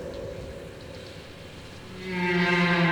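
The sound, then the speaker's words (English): Whale song, first a low steady drone, then a rising tonal call after about two seconds that swells louder with layered harmonic overtones, sustained and resonant, with no voices present. “Hear us. Hear our song.”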